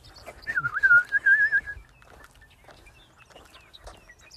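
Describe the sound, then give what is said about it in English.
A bird with a yellow head and white body calls with one clear, sustained whistled note that wavers slightly, loud for about a second, then fades into quiet outdoor background noise in rural Esperance. “That bird has a yellow head, I think.”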